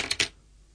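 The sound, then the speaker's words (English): Two quick, bright metallic clinks close together, like a coin dropped onto a hard surface and bouncing once, then a short ring fading into quiet. No one speaks. “So there is 5 coins, and you just have to figure out how much they add up to.”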